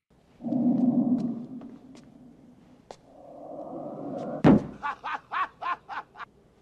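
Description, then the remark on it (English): A single loud thud as a head slams into a door in a film scene where Bill Murray slams a ghost's head into the door as a prank, cutting through a low droning background and followed by a quick series of short, rhythmic bursts. “right at the beginning when he just walks through the door and then Bill Murray just slams his head directly into the door afterwards.”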